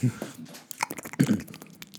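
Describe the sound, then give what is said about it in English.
A voice imitates a dripping, leaky faucet with wet mouth clicks and smacks, irregularly spaced over a couple of seconds and sounding much like someone chewing a sticky Starburst candy. “here's …'s impression of the drippy, drippy faucet. Sounds like he's just kind of chewing a Starburst”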